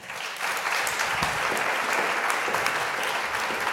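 An audience at a discussion event claps steadily for the women authors, a dense, continuous patter of many hands that holds at an even, fairly loud level from start to finish, with no voices standing out.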